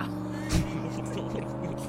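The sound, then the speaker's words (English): A car engine sputters as it tries to start and stall, a low, steady rumbling drone with layered harmonics, broken by a brief loud burst early on. “Sound like the car stalling.”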